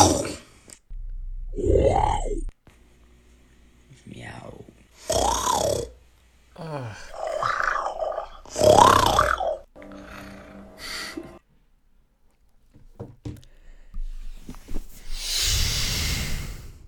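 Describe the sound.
A young man's voice makes a string of throaty, guttural growls and grunts in short bursts with pauses between, ending in a breathy rush of noise: a boy's best growl sent over Snapchat in reply to a girl's request, shown in a TikTok.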